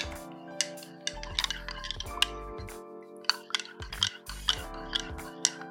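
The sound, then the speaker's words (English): A spoon stirs microwave-heated milk with spices and pumpkin puree in a mug, tapping the sides with a run of light, bright clinks at an uneven rhythm over a steady low hum. No one speaks. “Let me stir that up.”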